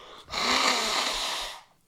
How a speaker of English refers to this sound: quit blowing his nose long enough